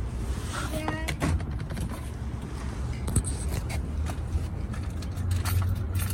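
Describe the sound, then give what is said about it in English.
Keys jangle in a few brief, scattered metallic clinks over a steady low rumble of background noise, with faint voices. “Got keys.”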